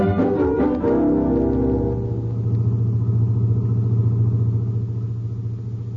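A car engine starts with a burst of mechanical clatter, then settles into a steady low rumble as the vehicle pulls away at night, the droning hum continuing loud without any voices.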